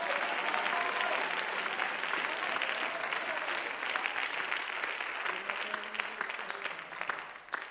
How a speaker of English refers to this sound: Somebody clap your hands for your pastor right now. Clap your hands for your Elijah. Clap your hands for the one that God called to lead you.